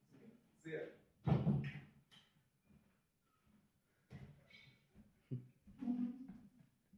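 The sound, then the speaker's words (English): A door slams shut once, a loud thud with a brief rattle, surrounded by quieter bursts of people talking before and after. “You were so, that door is so, you were so grumpy.”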